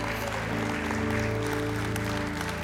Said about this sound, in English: Come on, let's give him a hand clap of praise in this house.